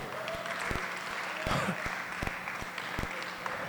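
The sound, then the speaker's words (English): Scattered audience clapping, a loose patter of irregular sharp claps over a steady crowd murmur, with a few louder claps standing out. “You are not clapping.”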